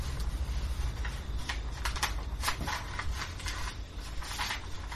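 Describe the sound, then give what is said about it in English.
A sheet of refill paper is torn from a pad, a crackly run of ripping bursts that stutters and catches over a few seconds. No one speaks. “Okay, could I have a fresh sheet of refill, please?”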